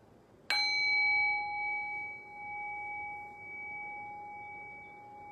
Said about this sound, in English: I will ring the bell, I will guide us into silence, and we'll take it from there.